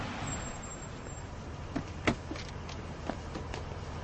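A car coming to a stop: a steady low engine and road rumble with a few sharp clicks and knocks partway through, and no voices.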